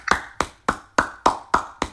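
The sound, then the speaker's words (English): A single person claps their hands in a steady, brisk rhythm, about seven sharp claps in two seconds, with no talking. “Yeah, somebody clapping a little too much, man.”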